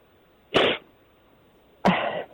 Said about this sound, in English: You're just going to keep sniffing, are you? Is that the joke? I'm struggling to see the joke. If you're just going to keep sniffing, if that's the joke, then you sniff away, buddy.